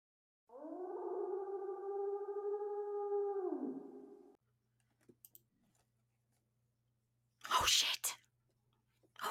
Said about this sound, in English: That same howl we had heard before pierced the air.